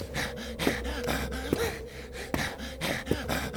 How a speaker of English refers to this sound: Do you hear his breathing? Ragged as a consumption patient.